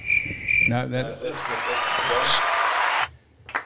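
A burst of canned applause from a sound-effect button, a steady wash of clapping that lasts about two seconds and cuts off abruptly, following a brief vocal sound.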